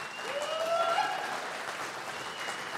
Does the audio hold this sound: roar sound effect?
no